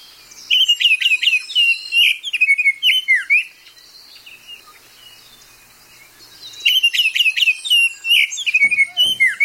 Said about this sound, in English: if a human was really good at whistling, you could imitate a Baltimore Oriole very easily, because the frequency of the Baltimore Oriole song is about the same frequency as human whistling.